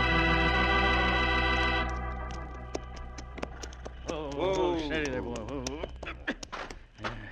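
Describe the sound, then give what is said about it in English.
Irregular hoof clip-clops of horses moving, sharp knocks scattered over several seconds, as they are brought into a grove off a town street, after a sustained musical tone fades out and a voice is heard partway through. “Nobody can see these horses from the street if we leave them here in this grove”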